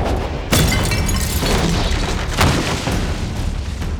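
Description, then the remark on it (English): A glass beaker, thrown by Thor with all his might at the giant Hymir's head, smashes with a loud, booming crash. A second sharp burst follows over a dense, rumbling wash of noise, with no voices. “The beaker shattered, and Hymir stumbled backward, through the door, and into the longhouse's compost heap.”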